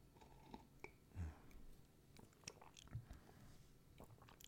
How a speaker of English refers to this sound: As always, I've got my trusty California mug today. Let's begin our day with a delicious sip of coffee.